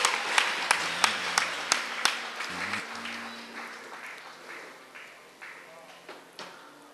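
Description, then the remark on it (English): A crowd claps for the Lord, sharp rhythmic beats standing out over a dense wash of applause and voices, the steady beat fading into looser clapping after a few seconds. “Let's clap for the Lord.”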